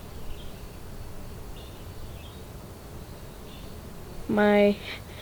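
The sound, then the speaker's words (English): Faint, scattered bird chirps drift over a steady outdoor hiss, then one brief, loud, tonal call rings out near the end. “I can hear all the birds right now.”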